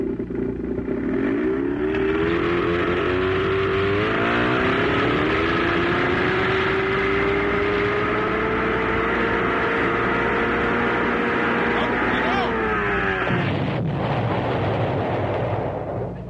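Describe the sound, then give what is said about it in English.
An 88 outboard motor, run without water, revs loudly, its engine climbing steadily in pitch for several seconds before ending abruptly in a harsh, clattering blowout near the end. “That's what happens when you don't run them with water. They'll blow up.”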